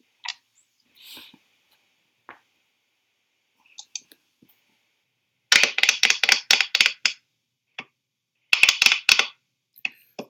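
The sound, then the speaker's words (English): Freshly manicured fingernails tap quickly on hard surfaces in two rapid flurries of sharp clicks, fairly loud, with a few scattered single taps before and between them. No one speaks. “No, I have I just got my nails done for Christmas, and they're like the fanciest nails I've ever had, and I can't like stop tapping them on things.”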